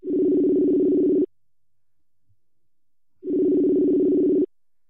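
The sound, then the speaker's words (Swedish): A phone ringing tone sounds twice, each steady buzzing tone lasting just over a second, separated by a two-second silence. It is clear and fairly loud, with no voices. The call is to a newly crowned Swedish champion in the 150 meter pass. “Då ringer vi upp då.”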